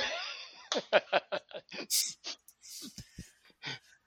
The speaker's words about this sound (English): Is he gonna fucking cough like that through the whole thing?